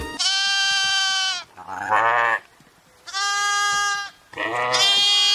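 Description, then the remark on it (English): Rams bleat loudly while ramming, four long wavering calls in quick succession, with only brief pauses between them and no voices. “They're ramming. Yeah. They're ramming.”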